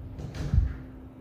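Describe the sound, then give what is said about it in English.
A door slams shut with a single dull, low thud, brief and muffled, preceded by a faint rustle, while a steady low hum runs underneath. “And my door just slammed.”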